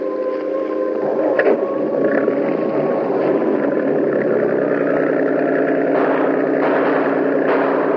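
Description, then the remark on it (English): A motorboat cruiser engine runs steadily, a loud, continuous droning rumble with a throbbing pulse, water churning faintly beneath it and no voices. “I have special auxiliary motor in this cruiser. We can lose them readily.”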